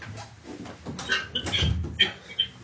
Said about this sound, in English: Sorry, I just want to close my door.